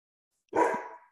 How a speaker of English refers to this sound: And my dog will not stop barking now.